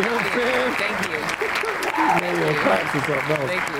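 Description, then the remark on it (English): A round of applause, a dense steady wash of clapping that holds at an even loudness, with voices talking and calling out over it the whole time. “When I know you that said was grateful, going to give me a round of applause.”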